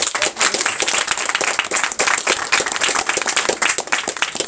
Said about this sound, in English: Okay, brilliant. Can we have a round of applause for...